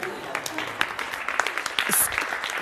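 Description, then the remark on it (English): A crowd applauds for a few seconds, a dense, steady patter of many hands clapping at moderate volume, with faint voices mixed in underneath. “Okay, so just like major applause.”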